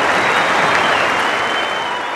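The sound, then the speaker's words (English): A large stadium crowd, standing, applauds and cheers Greg Chappell out to the middle in his last Test match, in a loud, dense, unbroken wash of clapping that holds steady throughout, with a thin high whistle-like tone running faintly through it. “Everyone off the backside standing up, cheering him out to the middle.”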